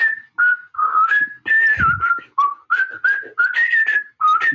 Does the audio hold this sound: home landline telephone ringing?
no